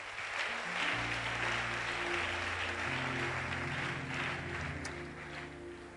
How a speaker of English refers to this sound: Let's give the Lord a clap offering.